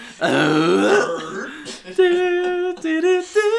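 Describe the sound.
A loud, drawn-out croaking burp up close, followed by a few sustained, tonal voiced grunts in quick succession.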